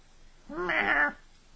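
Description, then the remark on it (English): A single drawn-out cat meow, clear, rising then falling in pitch over about half a second, with nothing else around it but faint background hiss. “And her thread magic takes the form of a little kitty cat on her head.”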